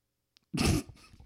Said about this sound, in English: That was a full gas leak. Like, I didn't fart. It just came out of me. You know what I mean? Nasty. You know what I mean? It wasn't like I went, it just kind of fucking fought its way out.